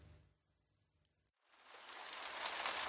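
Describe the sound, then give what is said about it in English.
After a brief quiet stretch with a low hum, a steady hiss of falling rain swells in and keeps building, soft and continuous with no voices. “I cannot believe it's raining again.”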